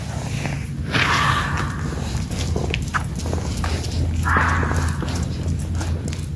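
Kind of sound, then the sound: animal, fox screaming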